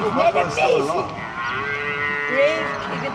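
A calf that is still alive and trying to get away bellows loudly and continuously, its strained, wavering cry rising and falling in pitch with no talking over it.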